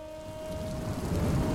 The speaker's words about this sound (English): Seriously? Rain? Now? How am I supposed to be broody and introspective under these conditions? I guess this is what I get for recording this whole thing outdoors.